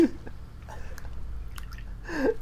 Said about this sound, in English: Tosses his sons into the water as he's complaining about upsetting the biological whatever balance. That's harmful to the environment. Splash.